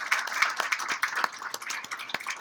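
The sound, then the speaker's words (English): An audience applauds, a dense patter of many hands clapping at once with sharp individual claps popping out of the steady wash of sound. “A round of applause for Nick.”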